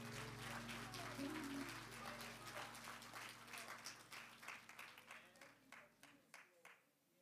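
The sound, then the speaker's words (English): An audience claps hands in praise, a dense wash of applause from many people that gradually thins into scattered individual claps before fading out. “If you know that there is still hope in the world full of despair, won't you give God a hand clap of praise?”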